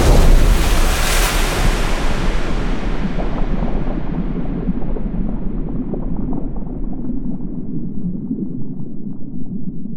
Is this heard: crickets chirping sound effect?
no